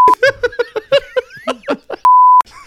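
A steady, high-pitched censor bleep tone sounds twice, a short one at the start and a longer, louder one near the end, with bursts of giggling laughter in between.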